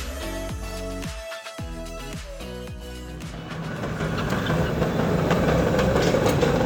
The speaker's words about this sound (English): To kick off the party, we are climbing up California Street to the top of Nob Hill on the city's oldest operating cable car, Big 19, with Mayor London Breed.